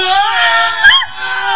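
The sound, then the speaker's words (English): Several voices yell loudly and continuously in a mattress store advertisement, a strained, high-pitched shouting that swells briefly near the middle before dipping and carrying on, as two men run into two towers of mattresses and knock them down. “Wait, what's the yelling?”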